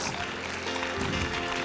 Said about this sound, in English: Hallelujah. Okay. Now we're clapping